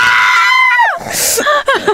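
A loud, high-pitched scream held for most of a second, sliding downward, then a sharp breathy burst and a few shorter squealing cries.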